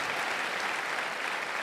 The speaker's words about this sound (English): Let's give the Lord a great big hand clap because he is so good.